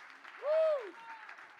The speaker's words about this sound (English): If you believe it, will you stand up? Come on and give Jesus a hand clap today. Come on. Jesus.